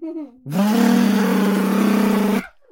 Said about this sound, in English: And around the corner came the dad with a lawnmower.